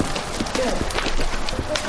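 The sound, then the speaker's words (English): A horse named Dove trots at a steady, quick rhythm in quick turns over the sawdust footing of a huge arena, the dull thuds continuous for the whole stretch against a constant wash of background noise. “trot into a huge arena filled with sawdust.”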